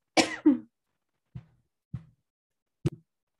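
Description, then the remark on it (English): A short coughing fit: two harsh, strong coughs close together, then three fainter coughs spaced about a second apart, with silence between them. “Had a little coughing fit there.”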